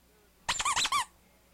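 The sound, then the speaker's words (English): A squeaky toy called Squeakerus is squeezed in a quick burst of about four shrill, wavering squeaks, fairly loud, lasting around half a second against a quiet background. “Here comes Squeakerus's opinion, the opinion of the week. Squeakerus, what do you think?”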